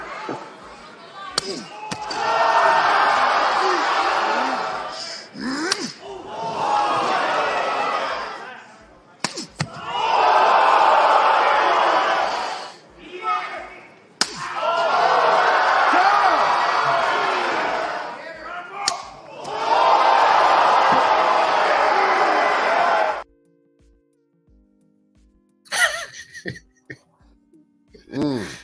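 Several loud, sharp open-hand slaps land one after another on big men at a slap competition, each set off by a roaring, cheering crowd that swells and fades between hits before a brief quieter stretch at the end.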